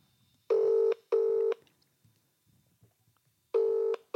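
A telephone ringing tone on the line: two quick buzzing pulses, a pause, then another pulse begins. The tone is clear and steady, heard alone with no talking.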